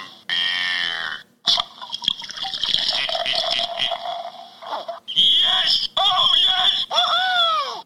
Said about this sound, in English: So we poured this beer into a Belgian tulip style glass because of the high alcohol content. And I'm looking at this and it is really, really dark.